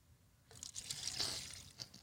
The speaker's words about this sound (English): Not while I'm pouring.